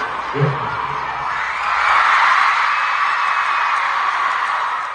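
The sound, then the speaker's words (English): A large concert crowd in Perth screams and cheers in a sustained, dense roar that swells louder after a couple of seconds and stays loud, while a performer drinks beer from a shoe, with a brief low voice audible at the very start. “So if you couldn't hear then, because everyone was screaming over him, he said, this is one of the most disgusting traditions I've ever seen.”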